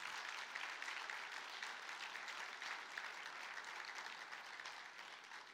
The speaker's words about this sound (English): And remember what we do now whenever we see a miracle? I'd like for us to give God the glory. So feel free to applaud and give God that glory.